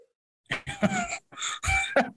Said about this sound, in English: Sorry, I just let up a huge cough. I'm all good though. Just choked on some food.